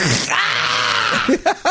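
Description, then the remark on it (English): A man's voice starts to hawk up a loogie with a harsh, raspy throat-clearing, then, as if stabbed in the leg, breaks into a loud, strained groan of pain, ending in a few short gasping grunts. “That's a guy who starts to hawk a loogie, but then is stabbed in the leg.”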